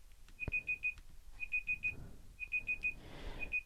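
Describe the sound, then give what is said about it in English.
A timer that someone set beeps in rapid bursts of four high-pitched tones, repeating about once per second, steady, with faint rustling in the background. “I put a timer on and I don't know which freaking. There it is.”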